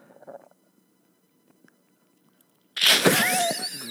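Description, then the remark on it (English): After a stretch of near silence, a loud, raspy burp erupts and rolls on for over a second, harsh and gurgling with a wet, throaty edge. “Got a little burp there.”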